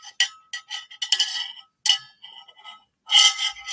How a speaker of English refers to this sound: Let me get a little sip of coffee here.